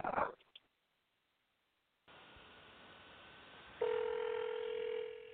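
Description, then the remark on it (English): A brief clunk of a handset, a short silence, then a hissy telephone line opens and a steady electronic ringing tone sounds over it, thin, as a prank phone call is placed. “Let me play this prank phone call for y'all on the break.”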